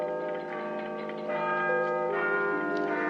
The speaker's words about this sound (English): The clock starts whirring madly and we hear like Big Ben like kind of chimes.